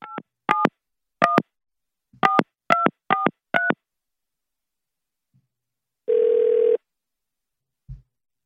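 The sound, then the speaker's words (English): A quick series of seven touch-tone dialing beeps as a phone call is placed to the CDC, then a pause and a single loud ringback tone on the line, ending with a soft click as the call connects to voicemail. No one speaks. “Just one ring and then write to voicemail”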